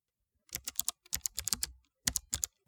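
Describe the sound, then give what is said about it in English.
Rapid clacking keystrokes from a mechanical keyboard, typed with both hands in quick bursts with short pauses between, crisp, with no voices. “I had to get rid of my mechanical keyboard at work because apparently that's, quote, annoying.”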